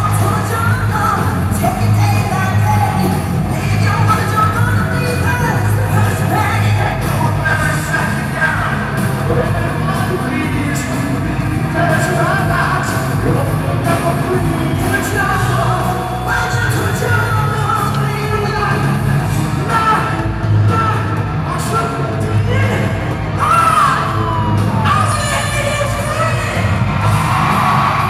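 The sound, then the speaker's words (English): A loud, dense crowd roars and cheers continuously over a live duet performance of a rock classic, with shouts and whoops rising above the steady wash of music and noise throughout. “Okay, crowd seems to be loving it.”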